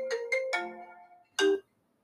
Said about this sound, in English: My phone is like really ringing.